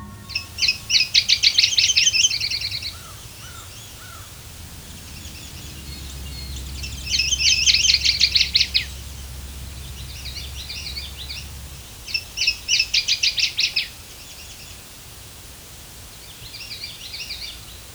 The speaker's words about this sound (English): Fortunately, a couple days earlier, I recorded a singing male northern water thrush at St. John Point Nature Preserve with an automated recording unit.